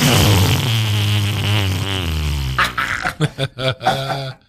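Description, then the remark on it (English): A long, buzzy fart with a wavering pitch, then a quick series of short sputtering bursts, loud with nothing else around it. “The farts and opinions expressed on Art Star Scene Radio are not necessarily the farts and opinions of Radio Free Brooklyn”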